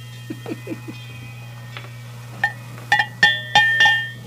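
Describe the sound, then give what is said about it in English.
A ranch bell once used on a ranch up in North Thompson rings out in a series of about six bright metallic clangs, each leaving a sustained shimmering tone, after a few soft taps, over a steady low hum. “There you ring your bell too.”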